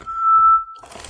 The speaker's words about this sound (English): It was this whistle blowing. So before every location pick, I'll whistle from now on.